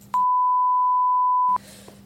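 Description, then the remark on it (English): A steady, loud electronic censor bleep holds one pure pitch for about a second and a half, cutting in between brief stretches of voices on either side. “I'm gonna have to blur that. Yeah. Yeah. Beep, beep.”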